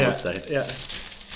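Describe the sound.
A brown, square cardboard record sleeve being handled: dry scraping and crinkling rustles in quick, uneven bursts, moderately loud, with a voice briefly audible underneath at the start.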